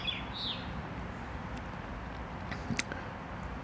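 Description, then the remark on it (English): A small songbird with a reddish throat, purplish red head and sparrow-like body, sitting on a house, gives a couple of quick, high chirps at the start, faint over a steady outdoor hiss, followed by a brief sharp tick near the end. “Beautiful call. It's got a reddish throat, kind of a red head, purplish red head with a sparrow-like body.”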